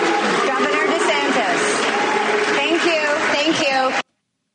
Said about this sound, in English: Did you hear the crowd? It was kind of interesting. Yes, there were definitely people applauding that, but there was a chorus of boos coming from the audience as well.